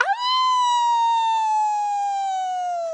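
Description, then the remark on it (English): A person lets out one long, high howl in imitation of a dog during a howling contest, holding a steady loud pitch for a few seconds before it slowly sinks lower at the end. “You want to have a howling contest?”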